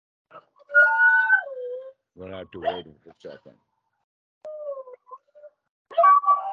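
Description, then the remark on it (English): Puppies whine in high, wavering tones, with a few short yelps scattered through. A person speaks briefly in the middle, and the whimpering returns in short bursts toward the end. “We've got some puppies here that are quite noisy in the moment.”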